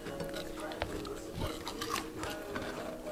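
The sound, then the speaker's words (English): Crunchy food being chewed, with a steady run of crisp, crackling bites and several sharper crunches standing out over a dense, textured mouth-noise background. “I'm excited to hear the ASMR. Yeah, from the crunch.”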